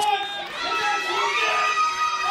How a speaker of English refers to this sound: All right, now it's just starting to sound like a bunch of people screaming on a microphone. I feel like that guy didn't need to cut a promo.